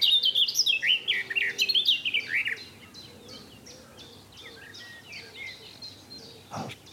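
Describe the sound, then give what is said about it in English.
A songbird sings a rich, fluty phrase of varied whistled notes, loud for the first few seconds, then quieter, fainter chirps continue with a brief click near the end. “to my ears, though, a garden warbler's louder, a bit more fluid, and the notes sort of end more like a blackbird. There's more flutiness, and the black cap's a bit more scratchy.”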